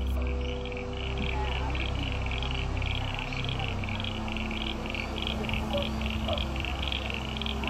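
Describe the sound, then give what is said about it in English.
A steady chorus of frogs calling, with rapid, evenly pulsed trills repeating throughout over a low background hum, no voices present. “just listening out for the sounds of frogs to record.”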